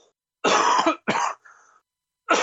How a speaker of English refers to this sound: I'm going to have to do a horrific cough. Hang on.